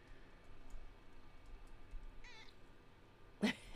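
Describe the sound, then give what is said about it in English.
A male cat, meowing in someone's face, gives one short, high, wavering meow over a low steady hum, and a brief sharp burst of noise follows near the end. No one speaks. “He sits here and he goes, meow, in my face.”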